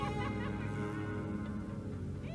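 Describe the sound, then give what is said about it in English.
A crow caws loudly and harshly from above, its raspy calls running together in a steady, unbroken stretch with no talking around them. “The evil crow chuckling above.”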